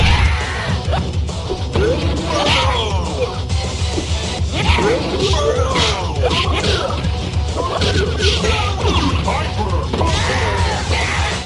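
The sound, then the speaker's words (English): The Killer Instinct skeleton fighter Spinal takes a barrage of hits from Cinder, with repeated smacking and crashing impacts and frequent high, strained shrieks and yells from Spinal over a dense, loud mix of game effects. “All of the shrieks are his, of course.”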